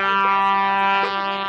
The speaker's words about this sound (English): the horn honking was too loud